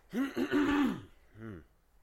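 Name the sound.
cough and throat clearing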